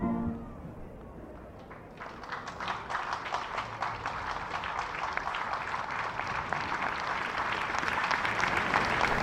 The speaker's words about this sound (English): Big cheer. Here are our fellas now. Green, white and green. Little lad beside just shouting out their names as they come out like they're school friends of his.